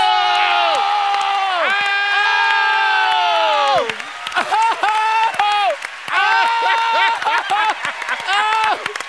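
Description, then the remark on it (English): Loud applause with many voices cheering and whooping over steady clapping for a performed piece from an off-Broadway hip hop theater production, the shouts rising and falling in pitch, briefly dipping around the middle before swelling again. “freedom is just the belief that I should still get some applause”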